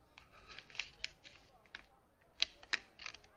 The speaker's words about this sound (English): That's him messing with the paper.